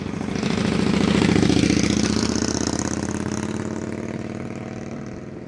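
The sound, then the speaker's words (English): A car approaches from the front, its engine rumble swelling as it nears, then passes round to the right and recedes with a slight drop in pitch, fading but still audible. No one speaks. “Should also be able to tell whether a car is coming from in front or behind me.”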